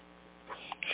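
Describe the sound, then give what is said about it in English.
A steady, low air-conditioning hum fills a closed car interior with the windows up, with a few faint brief squeaks near the end. No one speaks. “But, the car's where I always call in from. Windows are up, air conditioning's on, good acoustics.”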